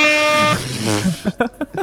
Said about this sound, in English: Like, I was just like blowing the air horn.